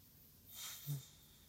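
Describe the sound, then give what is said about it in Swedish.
A single soft, breathy exhalation during a deep-breathing exercise done with eyes closed rises and fades over about half a second, with a faint nasal puff at the end, heard alone against quiet room tone. “Och sen andas du ut.”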